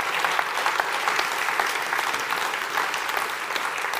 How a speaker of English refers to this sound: Can we have another round of applause for him? He was great.